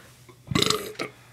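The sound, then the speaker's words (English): A single loud burp after drinking beer, lasting about half a second, with a rough, rumbling tone and a brief tail catch at the end, standing out against quiet background noise. “It's a burp beer.”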